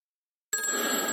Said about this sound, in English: the phone's ringing.